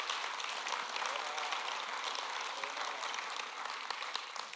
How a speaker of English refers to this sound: Somebody clap your hands to the Lord this morning.